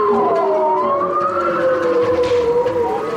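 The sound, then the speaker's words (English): Bowhead whale calls recorded underwater off the coast of Alaska: several long, overlapping tonal moans that slowly rise and bend in pitch, rich with harmonics, holding a steady, fairly loud level throughout with no voices. “We're listening to the underwater sounds of bowhead whales recorded off the coast of Alaska.”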